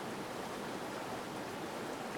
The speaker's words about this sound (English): Well, this water has a movement to it, right?